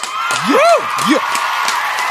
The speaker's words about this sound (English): Ladies and gentlemen, big round of applause for Boyd Duckett.